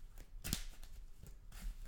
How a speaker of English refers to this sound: And we shuffle the deck up. Put all those weaknesses down at the bottom. That's how I always shuffle.